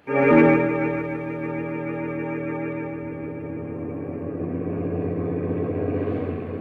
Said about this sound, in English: We rode home through the foggy night in the truck, the ape and I.